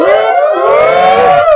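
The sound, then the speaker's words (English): Several voices shout a loud, sustained "whoop" in unison, recorded as a homemade sound effect. Their overlapping pitches swell and slide together so the group cry sounds much like an imitated siren. “Should we do a whoop whoop? Everybody do a whoop whoop.”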